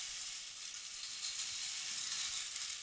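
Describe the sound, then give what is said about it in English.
A rain stick tilted so its beads pour through in a steady, dense, hissing rattle that stays even and unbroken for the whole stretch, with no voices over it. “Oh, I've left my rain stick there?”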